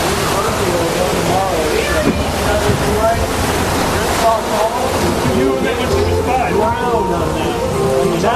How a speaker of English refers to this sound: It's raining harder. God. They're not trying to turn the rain off, apparently.